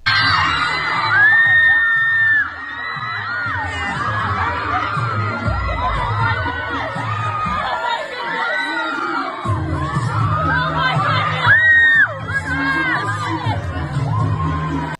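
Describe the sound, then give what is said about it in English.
A crowd of excited students screams and cheers continuously, with overlapping shrieks and whoops, a few piercing high squeals standing out, loud throughout. “So the screams showed the excitement of the urchins.”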